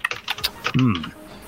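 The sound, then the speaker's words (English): Rapid clicking of keys on a computer keyboard, a quick irregular burst of taps, followed by a brief low voiced murmur near the end. “Yeah, somebody's typing at this moment.”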